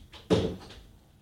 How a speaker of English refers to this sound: Oh, she's going to shut the door.